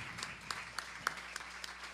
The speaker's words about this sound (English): Give yourself a round of applause for showing up. Give it up.